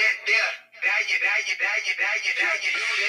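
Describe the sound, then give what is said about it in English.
A hip-hop beat from 2007 plays through a small phone speaker, sounding thin and tinny with no bass, rapped vocals running steadily over it for a few seconds after a brief dip at the start. “That's crazy that is even, like, just that we even talking about this, because this shit is on my phone.”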